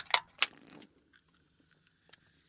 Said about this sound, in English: Oh, you both sip before me.